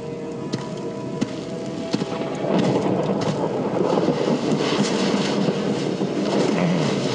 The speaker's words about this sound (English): Acid rain. It'll melt us down if we don't find shelter soon.